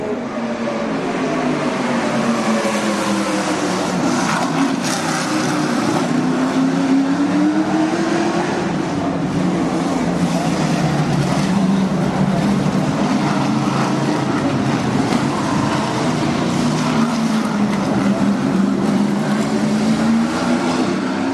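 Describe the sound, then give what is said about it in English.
Race cars roar past on a street course, a rough real road sectioned off for the race, with a loud, continuous engine whine rising and falling in pitch as one car after another passes, with no talking. “Just getting the feel of the cars, feel of the road.”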